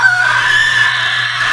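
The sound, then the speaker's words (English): A person lets out a sustained, shrill screeching roar imitating a raptor, a steady high-pitched cry held loudly for over a second with a raspy edge. “I love the raptor roar.”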